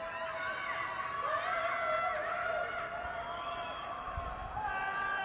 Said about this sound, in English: Right, those are people in their high-rise apartments screaming out their windows, wailing in collective agony.